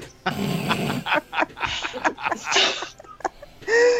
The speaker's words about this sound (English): inspired by the fact that we got stuck on Seven Dwarfs Mine Train and I had to hear Sneezy sneeze on repeat for like 20 minutes.